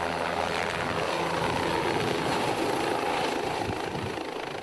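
An unidentified aircraft approaching Isla Sorna in restricted airspace: a steady, loud engine drone with a low rumbling hum and broad whooshing noise, holding constant throughout with no one speaking.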